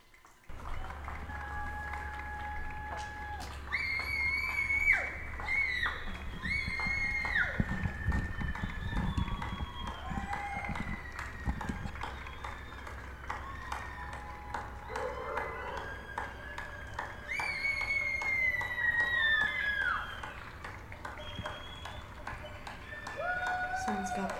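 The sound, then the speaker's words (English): Neighbours in New York clap and cheer together from their windows for the people on the front lines, a steady, continuous din with scattered high whistles, hoots and horn-like tones rising above the applause throughout, moderately loud and sustained. “This is a special New York moment that happens every day where, I don't know, maybe happen everywhere. Everyone starts clapping.”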